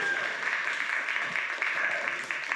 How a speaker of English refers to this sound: I think of administration, RAV team, who are doing a phenomenal job making sure everything runs, but we never turn around. They're right there. Can we give them a applause? Yeah.